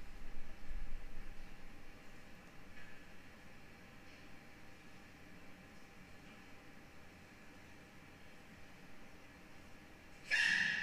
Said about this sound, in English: This is Sneezing Baby Panda. This clip is absolutely freaking adorable. Look at this little guy.